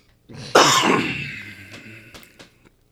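A single harsh cough bursts out abruptly, followed by a rough, raspy trailing exhale and a few faint clicks as it fades, with no talking.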